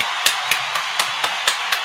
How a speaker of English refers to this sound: So first things first, let me get a round of applause going for 583 Expressions.